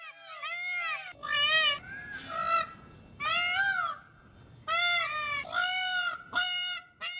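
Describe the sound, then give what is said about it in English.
A peacock gives a string of loud, harsh, wailing calls, about six shrill, nasal bursts with brief pauses between them, rising and falling in pitch like a cat's yowl. “Rose disagrees with peacocks even being beautiful. They have weird, long, skinny necks. Ugh, and that noise.”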